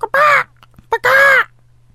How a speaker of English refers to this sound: I like the bird one. That was good. That was good.